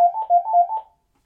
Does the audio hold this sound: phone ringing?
yes